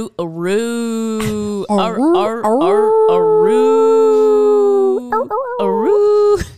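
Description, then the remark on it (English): A person imitates a dog howling, drawing out several long, rising and falling "aroo" wails with brief breaks between them, loud. “And then she just goes, aroo.”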